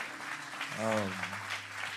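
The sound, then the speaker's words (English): Steady crowd applause, a dense wash of clapping that holds at an even, moderately loud level for about two seconds, with one voice briefly calling out over it partway through. “Honestly, can we just give them a round of applause, honestly?”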